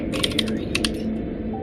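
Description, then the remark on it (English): A quick burst of keyboard typing while making a diagram, several crisp key clicks in a rapid irregular run that trails off, moderately loud over a low steady background hum. “Don't worry about what I'm typing.”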